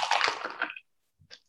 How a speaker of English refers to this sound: Honestly, we're making a cocktail for yourselves. You don't want to waste the ice. I don't do that. I mean, you can, but I usually am like, let me just go ahead and do it. Use the ice that's in here. So just pour it in.